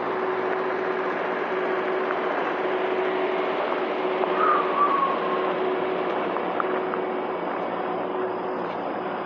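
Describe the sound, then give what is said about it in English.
A large truck engine idles steadily while trucks load and unload at a supermarket, a constant low rumbling drone with a faint steady hum running through it, unchanging in loudness from start to finish, with no one speaking. “I wonder if the idling laws apply to these large trucks unloading and loading.”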